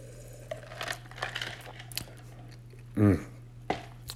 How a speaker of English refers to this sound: I'll let you guys ponder that for a moment as I take another sip.